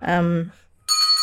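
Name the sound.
bell ringing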